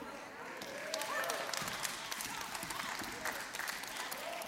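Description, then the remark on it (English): Rapid, continuous stomping of feet on a floor, steady and fairly loud, mixed with crowd noise and what sounds like clapping, with voices faintly underneath. “Y'all been getting on Bonnie for stomping, but she's just living in her authority.”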